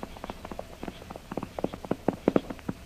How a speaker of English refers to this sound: Wait. The man on the white horse is coming this way.